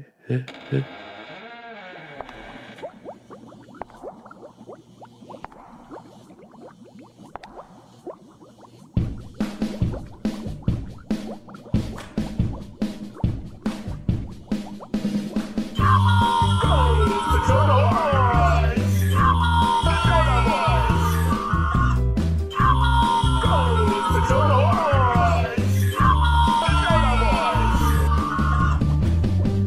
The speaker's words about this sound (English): Wow. Nice little mashup. Monster mashup, if you will.